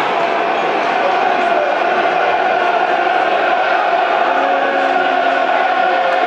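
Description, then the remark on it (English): A big football stadium crowd roars and chants steadily, getting behind the Lions during a match against Reading, a dense wall of many voices holding at a loud, even level throughout with no single speaker standing out. “Crowd trying to get behind the Lions, dear listeners. Urge them on.”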